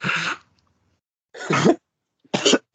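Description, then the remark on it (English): Three harsh, explosive coughs spaced with short silent gaps, loud and strained, from someone choking in shock at a rude remark; a fourth begins at the very end. No speech. “The coughing that I was just doing was me choking when she said this, because I was just like, that is so rude.”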